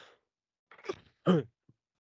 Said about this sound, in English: That was a cough for the audio listeners, if you somehow are still listening.